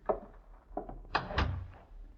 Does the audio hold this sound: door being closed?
yes